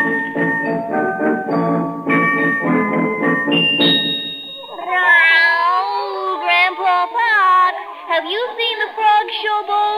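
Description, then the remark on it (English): After a few seconds of voiced, tonal sound, a female cat meows repeatedly, loud drawn-out wavering cries that rise and fall and continue to the end. “Land sakes, no, kitty girl.”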